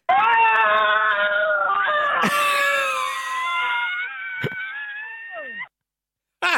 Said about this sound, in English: And there's just I'm looking at this now, and there's new screams that have been added 2 hours ago, 7 hours ago, 9 hours ago, of varying lengths. And do you want to hear a couple of screams that people have left?